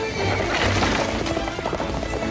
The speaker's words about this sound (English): The chocolate brown horse is weaving through the course. Amazing! It looks like this record is in the books, folks. And the white horse is catching up fast. Who's gonna win? It's too close to call!